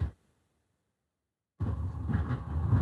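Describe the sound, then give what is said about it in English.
After a moment of near silence, a steady, heavy rumble with a low-end roar suddenly rises and keeps going as a train goes by. “Tell me when the train goes by, because I predict we will not hear it.”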